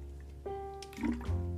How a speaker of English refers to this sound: Sorry. It's a water bottle.